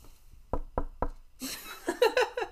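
Three firm, evenly spaced knocks on a door, fairly loud, followed by a rush of muffled, scuffling noise.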